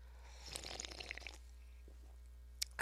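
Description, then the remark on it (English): A quiet sip of Bubbly brand sparkling water: a dense crackle of fizzing bubbles for about a second, a brief silence, then a short slurp near the end, with no talking. “I'm going to take another sip of it.”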